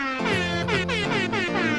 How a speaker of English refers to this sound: Give us that festive air horn one more time